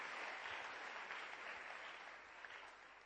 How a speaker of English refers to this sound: Clap again for him. He deserves.